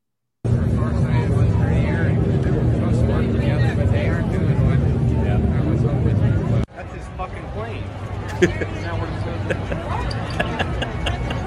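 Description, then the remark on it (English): Donald Trump's 757 jet roars loudly and steadily overhead, caught on an open hot mic near Ron DeSantis, filling the air for several seconds while a crowd chatters and murmurs underneath, then the noise drops to a quieter rumble. “And somebody happened, according to, I think this came from In the Matrix, somebody had an open hot mic nearby Ron when they look up and see his plane flying over, and you have to listen.”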